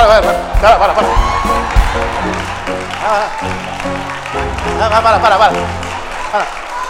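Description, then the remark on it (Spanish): A large audience shouts and cheers loudly and continuously, many voices overlapping in an excited roar with scattered whoops rising above the din, for several seconds. “Déjenme encantarla porque si gritan no me van a oír.”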